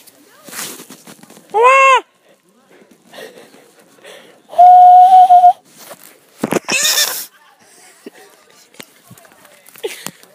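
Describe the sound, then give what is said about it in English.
A person under tree cover imitates the mating call of the wild pigeon with their voice: a short warbling hoot, then a longer steady whistled tone, followed by a breathy rising squeal, with quiet scuffling between. “I will now make the mating call of the wild pigeon to blend in with our surroundings.”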